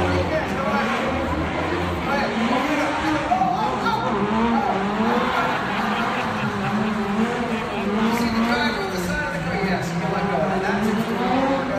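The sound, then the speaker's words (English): A small RC car, powered up to go faster, races at high speed during a filmed stunt, its electric motor whining and tires squealing continuously through the whole stretch, with voices audible in the background. “I powered it up. It's going to go a lot faster. Keep an eye on that car.”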